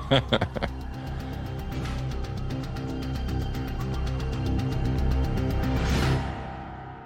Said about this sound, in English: you're going to get authentic blood-curdling coyote barks, yips, and howls